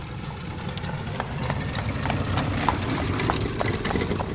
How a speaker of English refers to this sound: just went by in his horse and buggy, and I waved, and he kind of gave me a dirty look and kept going, so.